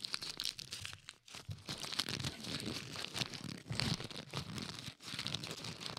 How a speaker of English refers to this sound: crackling his McDonald's wrapper really close to the mic.